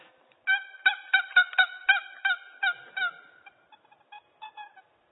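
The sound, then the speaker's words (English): A hen turkey yelps in a quick run of about a dozen short, nasal notes, strong at first and then trailing off into softer, scattered calls, with no one talking. “And the more he hears, the more excited he gets. I mean, he's thinking, there's a hen out there somewhere.”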